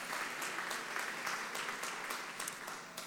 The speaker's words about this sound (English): We have a few baptisms for people today that they are going to make their faith public. Y'all give our baptismal candidates a hand clap this morning.